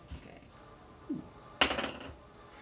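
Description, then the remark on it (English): A twenty-sided die clatters onto a hard tabletop during an attack roll in a tabletop game: a couple of light taps, then a louder rattling roll with several quick bounces settling out, no voices. “D20. Roll it twice. Take the lower roll.”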